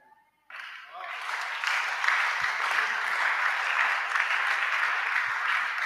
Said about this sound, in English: I have one, only few people are clapping.